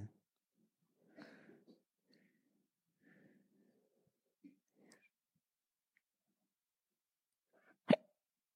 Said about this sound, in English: I had the hiccups again.